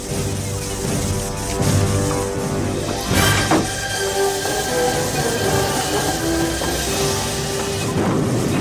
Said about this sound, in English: Okay, all right, so you hear the train taking off.